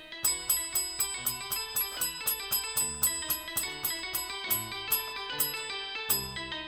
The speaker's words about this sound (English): It's a 21 bell salute.